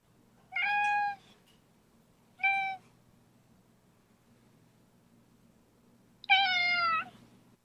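A cat meows three times: two calls close together, then a pause before a longer, louder, wavering meow. The cries are high and clear over a faint low hum, with no talking.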